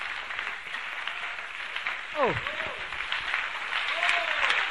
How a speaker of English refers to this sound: Why don't you put your hands together for the Lord?